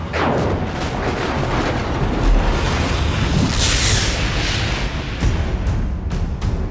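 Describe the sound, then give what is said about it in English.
A lightning bolt blasts a portal open: a loud, continuous roaring rumble, with a bright crackling surge midway and several sharp cracks toward the end. No one speaks. “A bolt of lightning flew from the portal, ripping it open.”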